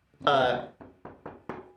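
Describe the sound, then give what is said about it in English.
A short burst of voice-like sound, then four sharp knocks on a door in a steady rhythm, fairly loud, each with a quick fading thud. “About 11, there's a knock on the door.”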